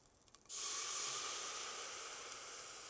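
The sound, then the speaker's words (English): After a brief quiet moment, a sudden loud burst of sizzling steam erupts as water is poured into a hot pan to deglaze it after beef was browned and taken out, settling into a steady bright hiss that fades only slightly. “Okay, I'm going to take the beef out now, and I'm going to deglaze with the water.”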